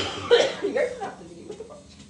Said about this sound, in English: Why are you coughing?